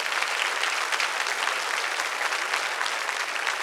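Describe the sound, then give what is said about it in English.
A crowd gives a hand clap of praise to the Lord, breaking into sustained applause, many hands clapping in a dense, steady wash of sound that holds at an even loudness throughout with no voices rising above it. “Your race, give the Lord a hand clap of praise on that, yes.”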